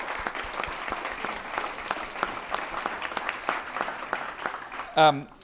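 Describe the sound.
A crowd applauds the Greater Cleveland Sports Commission, many hands clapping in a dense, even patter that holds throughout, with a brief loud voiced cheer bursting out near the end.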